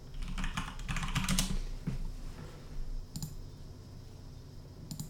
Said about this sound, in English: Excuse the typing.